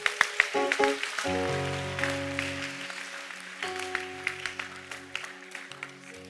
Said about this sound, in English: Clap for the Lord Jesus.